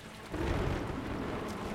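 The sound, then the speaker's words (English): Heavy rain pours down steadily while a deep thunder rumble breaks in early and rolls on beneath the downpour, loud, with no voices. “A crack tore through the sky. The skies rained down on them in torrents of water.”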